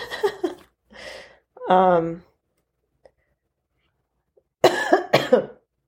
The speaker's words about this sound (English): I am not sick, just so you guys know, because a lot of people hear me coughing and like not coughing and sneezing, but just clearing my throat a lot. And I'm just super dehydrated, guys.